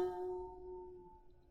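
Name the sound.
wine glasses clinking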